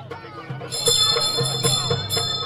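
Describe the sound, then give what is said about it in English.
A town crier outside a tent rings his hand bell briskly and repeatedly, each clang leaving a bright, shimmering ring that carries through. It's loud, over a low murmur of background bustle. “A town crier outside the tent rings his bell, and the bustle outside goes quiet.”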